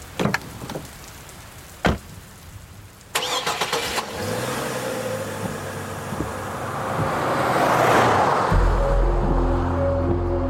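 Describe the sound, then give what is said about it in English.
A couple of sharp clicks, then a truck engine cranks and catches, idling roughly before revving up into a steady, rising drone as the truck is turned around and pulls away. Fairly loud, with no talking. “I hopped in the front of the truck and started turning it around.”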